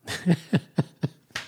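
animal, dog barking

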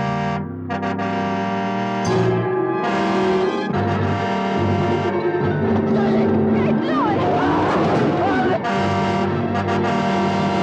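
vehicle, car engine roaring past

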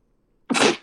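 human body sound, sneeze

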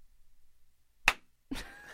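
impact, hand slapping a person

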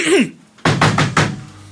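impact, knocking on a door

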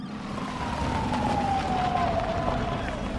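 vehicle, ambulance siren

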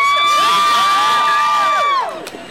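crowd, crowd cheering and shouting

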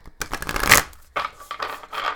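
household object, shuffling oracle cards

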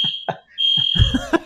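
signal or alarm, fire alarm going off

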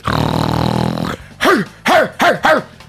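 animal, dog barking and growling

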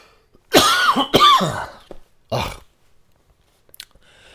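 human body sound, a person coughing

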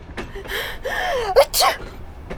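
human body sound, sneeze

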